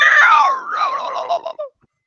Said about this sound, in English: Somebody said that it was too early for weird and strange noises. No, I said it's far too early for scream dogs. Oh, for the scream dog. Yeah. It's far too early for the scream dog.